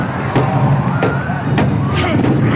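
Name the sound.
punches landing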